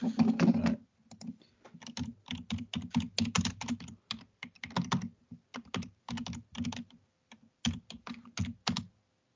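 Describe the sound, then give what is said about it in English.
Loud, rapid typing on a computer keyboard, dense bursts of sharp key clicks close to the mic with brief pauses between flurries, no voices. “Some real loud, powerful typing.”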